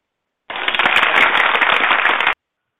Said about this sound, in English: I had to cut the applause off. You gave him half of the applause.